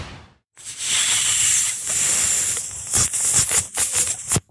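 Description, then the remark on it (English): Chris Eubank imitates a hissing snake: one long, loud, breathy hiss for a few seconds, then a string of shorter, choppy hisses. No words are spoken. “And Chris Eubank does an impression of a snake.”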